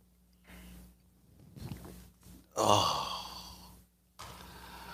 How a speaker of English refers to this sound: It's called the simultaneous sip. And it sounds different when I'm talking in my coffee cup.